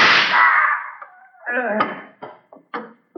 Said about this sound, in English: He's knocking over that statue! It's fallen over!